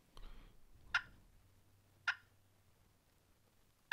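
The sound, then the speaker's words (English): Soft, sharp turkey clucks made on a turkey call to get a turkey's attention: three short, crisp pops spaced about a second apart, quiet and isolated against a faint low hum. “We got clucks right here. Okay. Now that's not very loud, right?”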